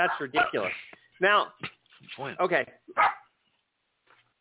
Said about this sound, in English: There's a dog. That's my dog. Don't mind me.